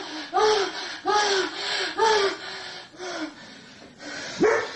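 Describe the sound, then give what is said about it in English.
A dog barks five times in a steady rhythm, about once a second, each bark short and fairly loud against a quiet background, with the last one rising higher in pitch. “Oh, he barked. Did you hear that? He barked. Yeah. It was a bark. Total bark.”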